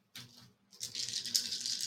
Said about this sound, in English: Oh, so satisfying, that handful of dice. Ugh. 8, rogue field 11... Again. Yeah, except they're D8, so even better.